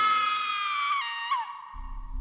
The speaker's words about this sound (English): Then finally, I let out a blood-curdling scream.